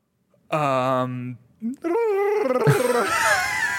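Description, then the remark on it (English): A voice imitates the Predator, a monstrous alien creature: a deep, harmonic growl slides into guttural warbling and ends in a loud, raspy, clicking snarl, all performed vocally without words. “what does the predator sound like?”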